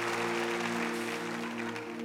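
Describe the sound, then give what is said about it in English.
A church audience practices applauding on cue, many hands clapping in a dense, even wash of sound that stays loud throughout, with a low steady hum underneath. “I think we're gonna get like an applause sign, you know, and I'm gonna press it at certain times, and then you all can just go along.”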